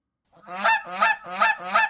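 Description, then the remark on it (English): A goose honks loudly and urgently in distress as someone tries to force a pill into its mouth, four harsh, nasal calls in quick succession, with no other sounds around them. “A goose began making loud, distressed noises as Cassie attempted to force a pill into its mouth.”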